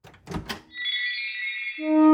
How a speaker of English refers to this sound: Ha-ha! Fantastic! The door has opened!